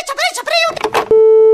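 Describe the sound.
A person talks briefly, then a loud, steady electronic phone tone cuts in and holds for about half a second, the flat beep of a disconnected call's busy signal.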